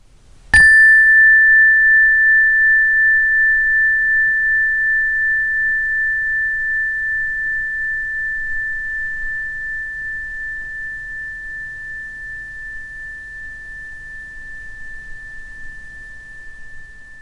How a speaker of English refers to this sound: As I ring my special meditation bell, listen to it ringing from the beginning to the end as it trails off into silence, and train your brain to come out of your thought stream and into the sensory awareness that is all around you.